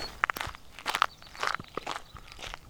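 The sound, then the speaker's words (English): Footsteps of someone walking out from a tent onto the prairie at about 5:30 in the morning at dawn, a steady series of crisp, crunchy steps at an uneven walking pace, moderately loud, with no voices. “I'm just gonna walk out here for a little ways and see what I can hear.”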